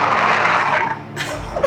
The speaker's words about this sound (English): Are you giving the phone a good sniff there? Yeah, I'm just blowing into the microphone, you know?